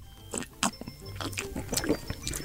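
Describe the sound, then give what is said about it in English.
Several people sip margaritas at once on a count of three: a cluster of wet slurps, soft liquid gulps and small clicks, uneven and overlapping, moderately loud, with no clear speech. “On the count of three, have a sip.”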